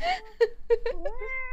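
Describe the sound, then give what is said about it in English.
A cat meows in a quick string of short, rising calls, several chirpy mews running into one another, fairly loud with no one speaking. “Well, if you listen closely, I think that answers itself. Oh, kitty.”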